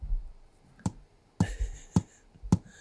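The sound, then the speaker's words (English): Four sharp, crisp clicks of long fingernails tapping on a hard surface, spaced about half a second apart, fairly loud against a quiet background with no talking. “I don't like the tap! I don't like the tap at all!”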